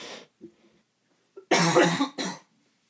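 A person coughs several times: a short cough, a faint throat sound, then two loud, harsh coughs in quick succession, with no talking.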